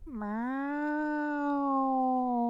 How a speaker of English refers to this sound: Meow. There you go. It's like a haunted cat.